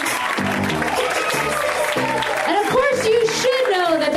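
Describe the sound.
A comedy theater audience applauds a stand-up comic loudly and steadily throughout, a dense wash of clapping with voices calling and cheering over it.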